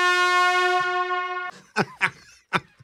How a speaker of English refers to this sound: I believe it's actually called a Jamaican air horn. It's you often hear it in urban songs. Kind of like the vuvuzela.